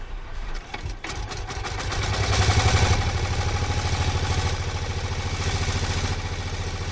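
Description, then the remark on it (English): A 1901 de Dion Bouton car engine, primed with petrol, catches after a few irregular knocks and settles into a fast, steady chugging rattle, swelling louder briefly before running evenly, as it sets off on the first Gordon Bennett commemoration rally, with no voices. “Ozzie Bennett, setting off on his 1901 de Dion Bouton.”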